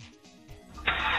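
A car engine starts in a parking lot before the car is brought up to the curb to pick up the family: a low, uneven rumble and then an abrupt burst into a loud, steady roar that holds to the end, with no one talking.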